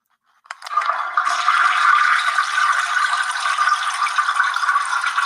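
A toilet flushes: a brief clunk, then a loud, steady rush of water that keeps roaring without letup for several seconds, with no voices.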